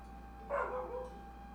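A single short dog bark rings out, fairly soft and a little distant, trailing off into a brief whining tail over a faint steady background hum.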